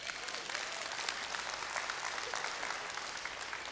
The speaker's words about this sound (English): I hate it when y'all half-heartedly clap. It breaks my, literally, it breaks my heart when y'all don't mean it.